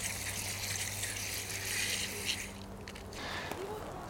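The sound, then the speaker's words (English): A steady pour of water splashing onto the surface of a plant's compost and soaking in for about two and a half seconds, the leaves pulled back so they stay dry; then it tapers to a softer trickle with a low hum underneath. “Just pull the leaves back and get some water on the surface of the compost for it to soak down.”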